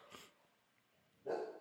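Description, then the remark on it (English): A dog that is not tied up barks twice, a short fainter bark followed after a pause by a louder, fuller one, with no one speaking. “That's Bentley. She's not tied up, but she still barks.”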